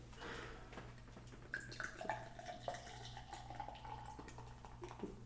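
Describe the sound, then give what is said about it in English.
Beer, a French-style farmhouse ale with rye malt, pours steadily into a glass, a bubbling, trickling flow with fizzy crackles and a few brighter glugs, over a low constant hum, with no one speaking. “A good pour isn't too bad either.”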